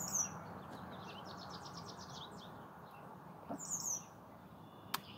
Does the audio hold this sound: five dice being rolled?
no